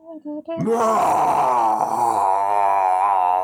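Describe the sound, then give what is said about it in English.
Zombie groans imitated by voices, more zombies coming in the distance, roused by the commotion: a few short guttural grunts, then a loud, sustained, wavering moan that drones on with a rough, layered tone. “However, in the distance, roused by all the commotion, more are coming. You hear.”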